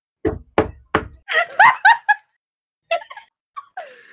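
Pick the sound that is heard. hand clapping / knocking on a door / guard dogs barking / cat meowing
knocking on a door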